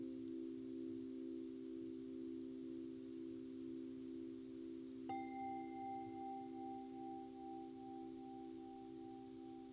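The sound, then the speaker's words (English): A Tibetan singing bowl, used as the bell to end a meditation, hums with a steady low drone, then is struck once midway, adding bright higher overtones that ring on and slowly fade. No one speaks. “After the next bell, we'll end the meditation.”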